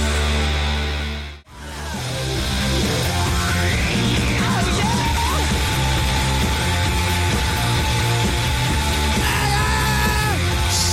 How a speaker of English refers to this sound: Loud noises! Shouting! Noisy guitars!